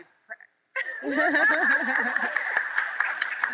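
Audience applause and cheering at a panel event burst out after a brief faint sound, a dense wash of clapping with high voiced whoops and some laughter, staying loud and steady for about three seconds.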